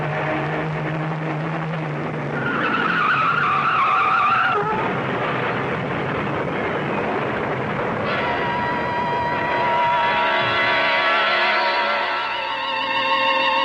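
A car skids with loud, drawn-out tire squeals over a rumbling engine as it swerves off the road to avoid a truck: one sharp screech early on, then a longer, wavering squeal, forceful throughout.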